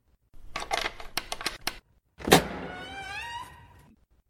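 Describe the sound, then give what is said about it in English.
A guard opens a jail cell door to let visitors in: a burst of rattling metallic clicks, a brief pause, then one loud heavy clang whose ringing metallic tone fades out over about a second and a half. No one speaks. “I'll have to close the door again.”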